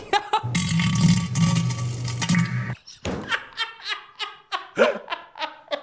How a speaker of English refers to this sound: the worst part of the fart sound is hearing the echo off the toilet. Dude, I know.